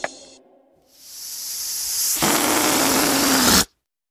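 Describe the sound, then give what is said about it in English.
Air hisses steadily out of a balloon, growing louder and then becoming a harsher, buzzing rush with a low squealing tone before stopping abruptly. “Yeah, I'm slowly letting the air out.”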